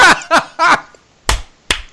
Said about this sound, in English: Wait, I just gave you both. My bad. I gave you a clap and a laugh. My bad.